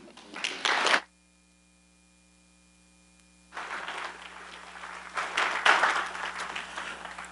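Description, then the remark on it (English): A church audience breaks into applause for a group of women in a short burst that stops abruptly. After a few seconds of quiet with a steady low electrical hum, the clapping returns, longer and swelling louder. “Go ahead and give those ladies another round of applause, please.”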